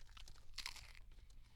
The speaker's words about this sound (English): So I am going to keep the microphone in front of my face while I munch.